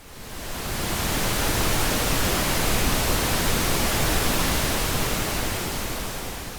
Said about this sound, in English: But thus the emergence, then, of pink, which you use. Why don't we listen to some pink noise?